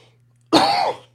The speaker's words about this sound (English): Excuse me. I don't have a cough button.